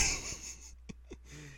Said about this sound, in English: Okay. Cough. Who are you, me?